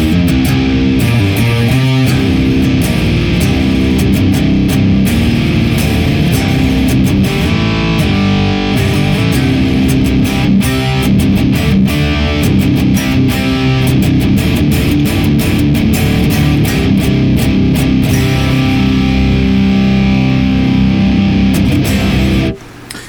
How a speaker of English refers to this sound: In the Boss IR200 utilizing the Thermionic Distortion, or the Thermi FA1 Uber 75, it sounds glorious like this.